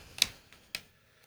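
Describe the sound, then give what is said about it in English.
Two brief, crisp rustles of paper, about half a second apart, fairly quiet against an otherwise hushed background with no one talking. “Yeah, but we hear the rustling paper, so you're.”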